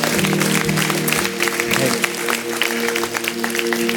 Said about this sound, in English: Can we just give the Lord a round of applause today?